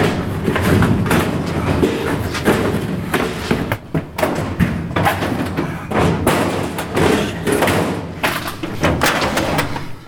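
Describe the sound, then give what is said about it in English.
A stuck metal filing-cabinet drawer being forced open, its metal frame bent to get it open: repeated loud thuds, bangs and rattles in quick irregular bursts, continuing for several seconds with no talking. “One of the filing cabinet drawers was stuck and wouldn't open.”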